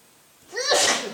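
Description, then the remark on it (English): A single sharp sneeze with a quick drawn-in breath and then an explosive burst, heard on its own with no talking. “God bless you.”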